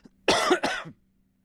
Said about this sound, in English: I think … needs some. He's still coughing. It hasn't gone away.